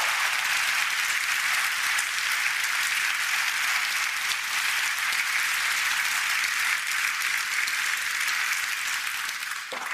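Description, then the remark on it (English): A crowd at a book event applauds steadily for about ten seconds for the speaker's parents and brothers present in the room, a dense, even wash of many hands clapping at constant loudness, with no voices standing out. “So if all of you guys can give a round of applause.”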